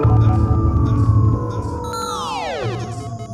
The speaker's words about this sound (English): Whirled through the vortex of spinning lights and roaring sound, Tane loses consciousness to awaken in a strange world.